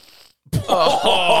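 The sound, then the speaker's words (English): A loud, harsh sniff drawn in through a blocked nostril, wet and rattling with a snorting buzz, lasting nearly a second after a faint hiss and a brief silence. “Listen to me breathe in through my left nostril. Okay. Now, listen to the right one.”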